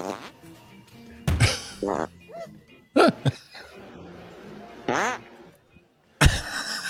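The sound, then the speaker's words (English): Several loud, abrupt fart sounds burst out at irregular intervals, sharp, in a prank recording made to scare people, with quieter background noise and brief voice-like sounds in between. “Scaring people with farts.”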